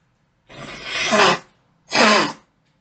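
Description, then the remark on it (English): Two forceful nose blows: a longer, building honk followed by a shorter, sharper one, both airy and slightly whistling, with no talking. “I'm about to blow my nose one more time”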